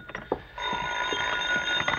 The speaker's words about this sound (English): You're still searching for a solution shortly before midnight as you enter your apartment to find the phone ringing.